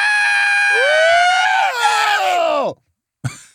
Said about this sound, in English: Let's get that out real fast. Yeah. We just had a tick every 5 minutes. We had to do that. 5 minutes, we have to scream.